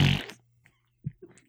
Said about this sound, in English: Farting dude.